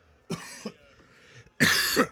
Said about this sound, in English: cough. Sorry.